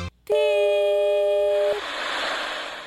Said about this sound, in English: Beep.